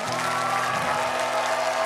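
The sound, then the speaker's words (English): An audience claps hands as loud as they can and shouts to Jesus Christ, with shouting voices mixed into the dense, continuous roar of applause. “I want you to clap your hands as loud as you can and give the loudest shout to Jesus Christ.”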